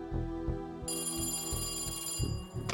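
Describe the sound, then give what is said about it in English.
A telephone bell, an incoming call to a sheriff, starts ringing a moment in and keeps up a loud, continuous metallic ring over a low, steady pulsing beat. No one speaks. “He thought the investigation would last a while, but that afternoon, he received a phone call that gave him his first big lead.”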